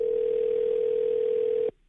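A steady, unbroken telephone dial tone hums at a single mid pitch for under two seconds as the New Country 103.1 radio show calls a listener, then cuts off abruptly into near silence as the line connects.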